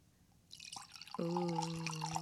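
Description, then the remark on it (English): A 2015 Oregon Riesling pours into a glass: a soft splash, then a steady, gurgling stream with a ringing, resonant tone that holds for about a second, with no voices. “I'm going to pour it. I'm going to pour mine.”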